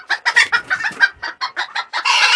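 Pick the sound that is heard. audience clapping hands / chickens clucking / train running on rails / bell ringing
chickens clucking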